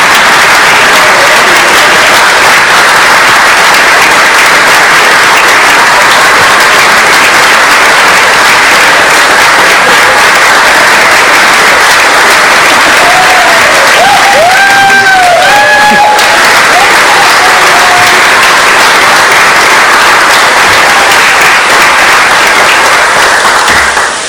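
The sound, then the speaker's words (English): Loud, sustained applause from a large audience fills the whole stretch, a dense wash of clapping with brief whistles or cheers rising midway before it carries on steadily. “And now, okay, if you want to applaud, you can applaud.”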